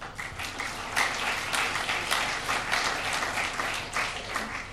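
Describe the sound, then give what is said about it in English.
A crowd at an Auckland conversation event applauds the program partners and supporters, including South Base Construction and design partner Rosine. A dense wash of many hands clapping at once, fairly loud and sustained for several seconds without any voices over it. “Ladies and gentlemen, what about a round of applause for those people who have made these conversations happen?”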